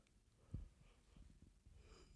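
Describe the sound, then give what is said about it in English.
A quiet yawn: a short snorting intake, then a low, drawn-out breathy exhale that wavers for about a second and a half, with no talking. “I yawned again.”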